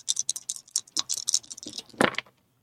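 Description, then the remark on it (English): A rapid flurry of light plastic clicks and clatters for about two seconds, ending in a louder knock and a few final taps as rolled dice tumble to a stop, with no talking. “All right, dice. Do a slightly better job, please.”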